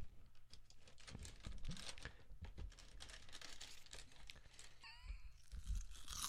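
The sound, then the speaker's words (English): Loud crunching of dry Chocolate Toast Crunch cereal being chewed, a steady run of crisp, crackly bites with no talking, and a brief squeaky warble near the end. “So it's chocolate toast crunch. So I'm going to do a dry.”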